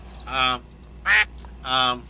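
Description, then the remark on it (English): Three nasal, buzzy duck quacks, evenly spaced and fairly loud, with the middle one short and sharp; they sound like a human voice imitating a duck rather than a real bird. “As the door swung open and the duck stood there, the waitress became furious.”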